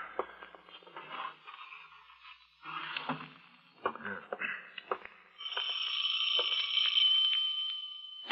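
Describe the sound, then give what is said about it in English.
A doorbell rings with a steady, shrill, sustained tone in the last few seconds, following a stretch of muffled, indistinct rustling and shuffling sounds. “But I suggest you put the manuscripts away before you answer the doorbell.”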